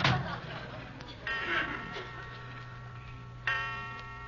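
A clock ticks steadily while deep, resonant chimes strike and ring out, each tone lingering and fading before the next, the start of a clock striking twelve o'clock.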